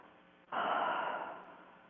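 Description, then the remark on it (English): A single long, audible exhale by a person demonstrating breathing out after breathing in fully, starting abruptly after a brief quiet moment, a breathy whoosh that holds steady and then slowly fades. Fairly soft, with no talking over it. “and breathing it in as fully as you possibly can, and then breathing out like...”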